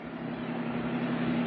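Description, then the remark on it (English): A second-hand car's engine runs steadily at a constant pitch, a continuous low hum with a faint rumble, even in loudness throughout, with no voices. “It's a very nice car”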